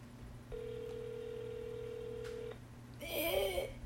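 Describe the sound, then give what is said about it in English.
An outgoing phone call, the eighth that day to a man who does not answer, rings: one steady two-second ringback tone over a low background hum, followed after a short pause by a brief warbling electronic chirp. No one speaks. “Awkward silence for the phone ringing.”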